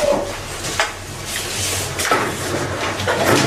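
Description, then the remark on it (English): A sliding glass door rolls open with a rumbling, scraping glide, marked by a few soft thumps and whooshes over low background noise, moderately loud, as a man pulls back a red curtain and leaves through the door. “beats feet out of the sliding glass door after he pulls back the red curtain.”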